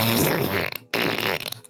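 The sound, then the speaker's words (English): Two loud, sputtering fart noises made with the mouth, one right after the other, each a wet raspberry that fades out with a fluttering tail. No talking. “Whoa, so those fart noises.”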